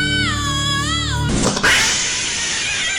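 A cat lets out a loud, strained yowl with a wavering pitch for just over a second, then it cuts off abruptly into a steady, broad rushing noise.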